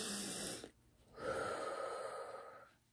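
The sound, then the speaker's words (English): Slow, deep breathing in and out as a "high five breathing" exercise: one airy breath fades out, a short pause follows, then a longer, steady breath rises and trails off. No one speaks. “So let's both do a high five breathing.”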